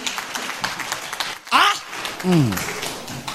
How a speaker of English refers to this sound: Clap for the pastor. That's what I'm talking about.